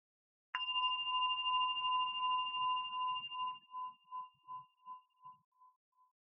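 A single meditation bell is struck once to start a meditation practice, giving a clear, steady tone around one pitch that holds for a few seconds, then pulses in slow, fading beats as it rings out alone.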